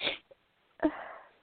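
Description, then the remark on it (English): A woman sniffs twice, breathy and hissing: a short sharp intake, a pause, then a longer one that starts abruptly and trails off softly. Moderately loud, no talking. “She is still sniffing.”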